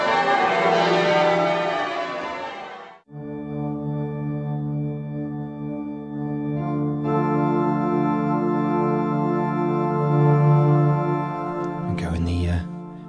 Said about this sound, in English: Bells there of Lincoln Cathedral chiming because it's time for a question of Lincoln.